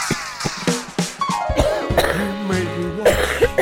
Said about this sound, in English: Just thinking about it makes me want to cough.